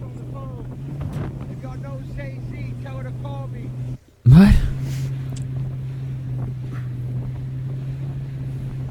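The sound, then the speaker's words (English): A jet ski engine drones steadily on open water at night in pitch darkness, with wind buffeting the microphone, briefly cutting out before a sharp burst of rushing noise, while voices speak over the engine hum. “They don't put headlights on jet skis.”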